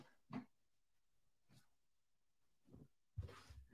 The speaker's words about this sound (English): My fucking dog's eating a pillow over here. I got all this. They're like so spoiled. There's like a little bed of like pillows and stuff over here.